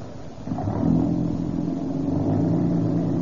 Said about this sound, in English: Car, it's got a lot of pep. This old car's got a lot of pep. Hey, it's a different car since we've been using that Rio Grande crack gasoline.